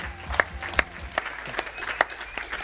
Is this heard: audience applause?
yes